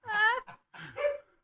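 A dog gives a couple of quick, high-pitched barks, the first longer and louder, followed by a shorter double yip, with no talking.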